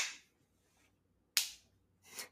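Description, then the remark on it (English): Slow hand clapping: three sharp claps spaced roughly a second apart, each with a short ringing tail, otherwise quiet with no talking. “Slow clap.”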